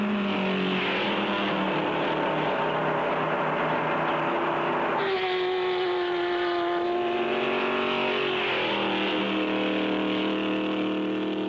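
Race car engines roar steadily on a track, their pitch rising and falling as they rev and shift, one car swelling louder midway as it passes, with no voices over the continuous mechanical drone.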